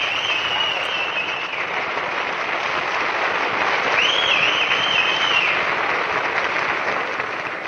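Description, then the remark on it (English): A large crowd cheers and applauds a winner in a steady, dense roar throughout, with high, shrill whistles cutting through, one held early on and another swooping whistle midway. “Like, listen to this, and the whistles.”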